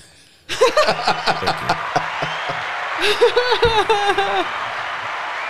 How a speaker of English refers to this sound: Can you hit the applause?